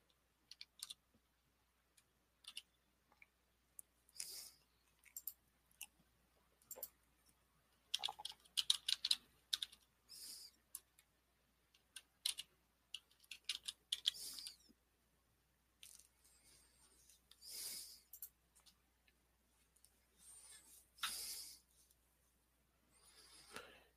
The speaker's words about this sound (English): To those listening on the audio, that might sound like, why did he go quiet? I'm just typing in stuff here for a second here.